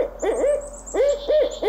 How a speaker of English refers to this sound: So take us to our bird today. This week's featured bird is probably my favorite owl, the barred owl.